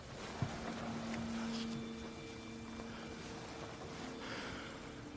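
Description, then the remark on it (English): A boat engine drones with a steady low hum over rushing, churning water, with a sharp knock early on and the tone shifting as the boat goes out of control and swings to port. No one speaks. “She's out of control. Swinging to port.”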